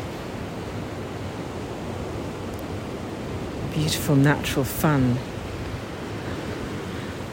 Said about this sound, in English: I frequently see seals surfing the waves on this beach, on this coast.